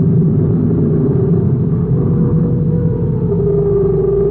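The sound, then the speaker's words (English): A big interstellar spaceship, commanded by Captain Tkoja, landing on the surface of Jupiter's fourth moon: a loud, steady low roar like a big engine, with a droning hum that shifts slightly higher toward the end, heard alone without any talking. “Captain Tkoja sets a big interstellar ship down on the surface of Jupiter's fourth moon.”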